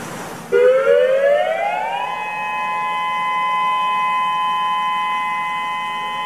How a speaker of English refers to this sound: This is the tsunami warning siren.